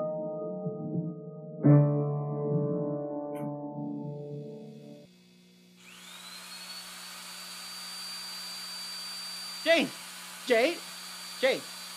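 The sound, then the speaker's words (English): A THX-77 power drill with built-in rotoscope spins up partway through with a rising whine, then holds a steady high-pitched motor hum. Three short swooping bursts cut through near the end, after an earlier low droning tone. “It's just a power drill.”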